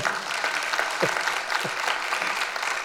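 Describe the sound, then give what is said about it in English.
A crowd applauds steadily to give God a hand of praise, dense overlapping claps forming a continuous wash of sound at an even loudness, with no one speaking over it. “That's a good place to give God a hand of praise.”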